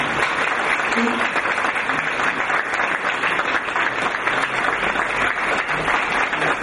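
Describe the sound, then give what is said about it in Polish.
Sustained applause from an audience for two recipients of the Knight's Cross of the Order of Polonia Restituta, a dense, steady wash of many hands clapping at an even loudness for several seconds, with no break or fade. “Proszę państwa, brawo dla nich.”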